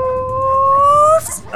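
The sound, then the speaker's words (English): A person's voice imitates a howling dog with one long, steady howl that slowly rises in pitch for about a second, then breaks off into a short breathy sound. “And we throw some dogs after you. Tumbling in space. They're just like...”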